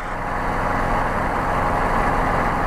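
A steady, loud Guimbal Cabri G2 helicopter engine drone heard from inside the cockpit, a dense low rumble with a broad whooshing wash over it that holds constant throughout, with no voices.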